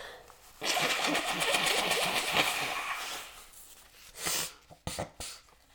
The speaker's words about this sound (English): I gotta blow my nose. This is rough. Now watch this. Now look, blow my nose real quick.